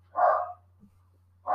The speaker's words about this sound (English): The dogs are barking at ghosts again.